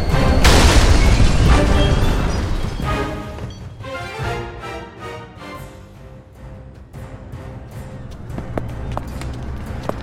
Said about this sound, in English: What was that? An explosion on the tracks! Now hold tight!